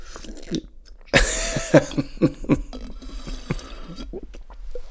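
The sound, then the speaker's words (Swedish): Someone slurps a drink of water with a sudden loud sucking burst, followed by several wet gulps and swallows, then quieter mouth sounds. No one speaks. “Jag ska bara suga i mig lite vatten.”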